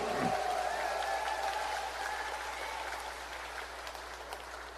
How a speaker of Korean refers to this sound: 여러분, 저한테 응원의 박수 한번 보내주시겠습니까?